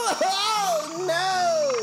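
A frog's call carries loud throughout, a sustained, bending, reedy trill with a rising then gliding pitch, heard alone without talking.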